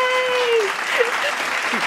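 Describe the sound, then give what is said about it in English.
Steady, dense clapping from a group fills the whole couple of seconds at an even loudness, with a faint voice-like tone sliding downward early on. “I'm clapping for you.”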